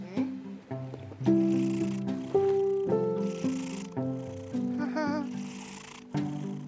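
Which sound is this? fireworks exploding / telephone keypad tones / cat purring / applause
cat purring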